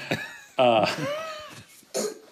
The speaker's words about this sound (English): I just had a cough there. Sorry.